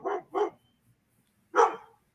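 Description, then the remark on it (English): A dog, scared by a boy in a Megan Halloween costume, barks three times: two quick barks close together, a pause of about a second, then one longer, louder bark. No talking. “You've been scaring a dog, it looks like.”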